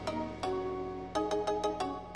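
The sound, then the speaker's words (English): A meme-style Chinese gong sound effect: two ringing metallic strikes, then a quick run of five or six sharper hits over a sustained, tonal shimmer. It is moderately loud and there is no talking. “Chinese gong meme sound effect.”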